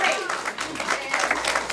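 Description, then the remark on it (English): An audience claps hands as praise to God in a steady, dense burst of applause, loud and continuous throughout, with a few voices faintly mixed in at the start. “Someone just give God a good hand clap of praise.”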